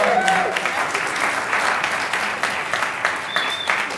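A steady round of applause from a group, dense overlapping claps lasting the full few seconds at fairly even loudness, with a couple of faint whistles rising above it.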